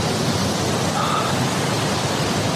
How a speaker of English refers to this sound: He's on the beach, by the way, in case you can't hear the obnoxious waves that are in the background.